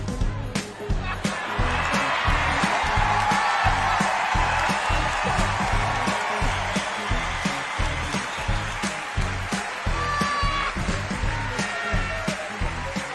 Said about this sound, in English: You can hear at the end there all of the clapping because it's literally like she just starts dancing